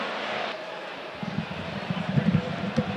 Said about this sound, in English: There was a drone flying above the stand and it's now buggered off.